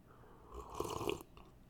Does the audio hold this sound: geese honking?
no